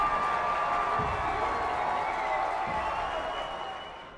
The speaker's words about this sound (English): He winked slyly and quipped. I'll see you tonight, honey, after the show. It was the perfect thing to say. The audience howled.